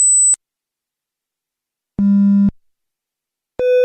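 Three separate electronic test beeps from an audiometer during a hearing test, each a steady pure tone at a different pitch: a high one, then a low longer tone, then a mid-pitched one, with silent gaps between.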